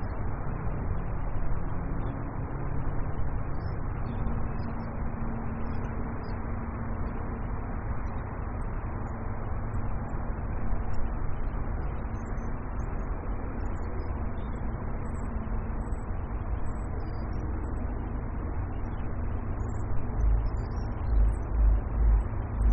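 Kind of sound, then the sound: vehicle, road traffic passing outside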